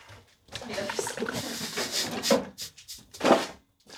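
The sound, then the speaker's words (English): A bottom kitchen drawer on the left slides open with a rough, rattling scrape, its contents clattering, then a few knocks and a final thud as it is pushed shut. “Bottom drawer on the left. That's bottom drawer.”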